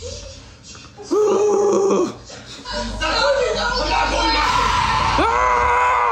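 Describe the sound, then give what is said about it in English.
A man lets out loud, sustained screams, one long burst followed by more strained yelling, raw, with a busy, noisy background underneath. “Wait, is he screaming? Yeah.”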